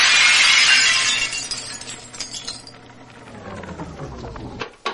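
A large handcrafted stained glass window shatters with a loud crash, followed by several seconds of tinkling shards falling and clinking, ending with one last sharp clink.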